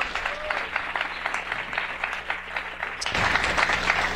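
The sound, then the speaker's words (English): An audience applauds steadily to welcome a comedy show host's first guest, a dense wash of many hands clapping at once that swells a little louder near the end, with no voices rising above it. “My first guest, you can applaud.”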